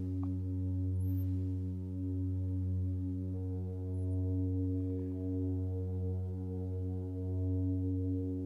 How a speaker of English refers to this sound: Perhaps you can make your hum vibrate all the bones in your skull.